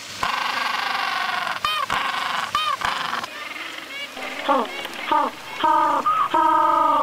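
A noisy chorus of penguins standing on ice above the water bray and honk, harsh harmonic calls overlapping in bursts with short gaps, loud and continuous with no talking.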